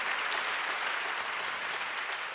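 A steady burst of audience applause, many hands clapping densely at once into a bright, continuous wash of sound with no voices and no pauses throughout.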